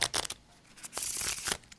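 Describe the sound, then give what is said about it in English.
A deck of tarot cards is shuffled, giving a few quick papery riffles and a longer crisp flutter of cards slapping together, with no voices. “Now give these a shuffle, Neil, and take a card.”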